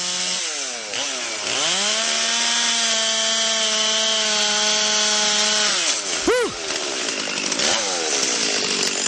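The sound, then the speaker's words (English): A chainsaw roars loudly and steadily as a man cuts through a big piece of wood, its engine pitch dipping under load, then revving briefly and sputtering near the end. No one speaks. “Wow, he's quite the artist with a chainsaw, too.”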